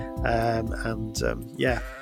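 A sheep bleats three times in a row, close and fairly loud, each wavering baa rising and falling. Nothing else can be heard alongside it.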